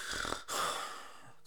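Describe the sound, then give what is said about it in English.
A voice imitates the heavy, labored breathing of a very overweight person trying to breathe: two rough, snore-like breaths, the first harsher and raspier, followed by the start of another. “like someone snoring, but they're just trying to breathe.”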